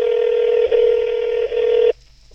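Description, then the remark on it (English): Telephone keypad dialing tones as someone places a phone call: a loud, steady electronic beep that runs in three joined segments, with two tiny breaks, then cuts off abruptly into near silence. No one speaks. “I'm calling Ryan right now, and I know he's online because I see him”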